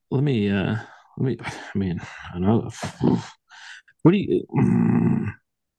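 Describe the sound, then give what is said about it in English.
A person growls like an animal close to a microphone in a series of loud, rough vocal bursts with short pauses, ending in one long, strained growl. “No, just the growling into a microphone like an animal just freaked me out a little bit.”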